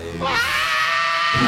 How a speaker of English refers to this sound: After this foreboding introduction, we hear a high-pitched scream followed by a literal monster roar